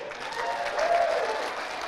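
Scattered, polite golf-clap applause from an audience showing appreciation for their pastor, a light and fairly even patter of clapping that stays moderate in volume, with a faint voice-like tone rising briefly in the middle.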